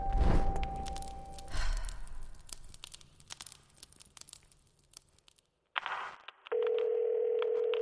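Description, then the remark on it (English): A telephone line from a phone placed in a tube crackles and rustles with static after a brief steady tone, goes quiet for a moment, then a steady, loud dial tone hums on until the end. “They put a phone in the tube.”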